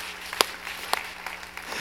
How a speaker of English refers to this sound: Can I get a hand clap? I just want to make sure we're fired up.